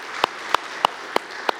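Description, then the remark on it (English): Applause for a volunteer who helps with group ministries, with five sharp, evenly spaced claps standing out in a steady rhythm over a soft, continuous hiss of background noise; nobody speaks. “So can we give him a round of applause for just what he does?”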